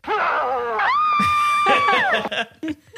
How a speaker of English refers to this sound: I thought … scream was pretty funny. Listen to this again. Listen to the initial scream from ….